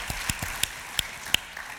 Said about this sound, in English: Okay, we have some crowd questions. Give claps for everybody in the room that wrote a question.